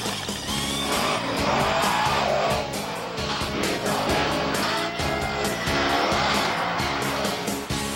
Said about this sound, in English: Monster trucks. The biggest, meanest, and most powerful pickup trucks you'll ever see.